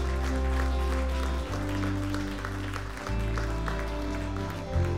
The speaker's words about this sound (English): Man, if that's you and you prayed that prayer, come on, let's just give Jesus a round of applause in here today.